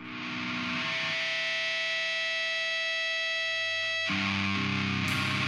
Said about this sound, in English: Crawling corrosive riffs are responsible for the meat of the release